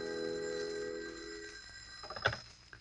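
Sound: telephone ringing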